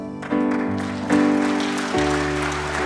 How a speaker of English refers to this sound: Thank you, students. Let's give them a round of applause as they make their way off the stage. What a blessing to hear our students and our kids singing.